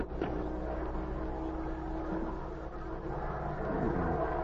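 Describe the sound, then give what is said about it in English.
A steady, droning hum of a distant airplane motor, low and continuous with a slightly rough, rumbling texture, holding an even loudness throughout with no voices. “Then, from the distance, came the hum of an airplane motor.”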